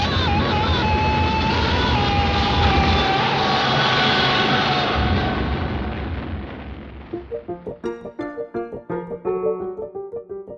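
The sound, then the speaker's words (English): A film scream rises over a dense, roaring wall of crashing noise, then gives way to a rapid series of short, sharp yelled cries, loud. “The two screams you just heard were from Ron Burgundy in Anchorman and Ash in Evil Dead 2.”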